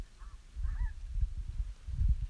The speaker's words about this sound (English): I think those are ducks, actually. They sound like some kind of a bird, but yes, definitely a set of ducks.